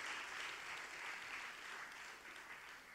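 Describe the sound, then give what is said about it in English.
Steady crowd applause during a service for the Nova Kids team of all ages, a dense wash of many hands clapping at an even level for a few seconds, with no voices standing out above it. “Give me a round of applause today.”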